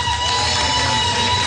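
A crowd at the State House applauds and cheers as a speaker is brought up, in a steady, dense wash of clapping and voices that holds at an even loudness for the whole moment, with a faint steady tone running underneath.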